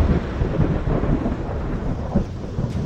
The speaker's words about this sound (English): Golden lightning, the color of the life song, begins to crack all around the weapon, and the hammer falls with a roar of thunder.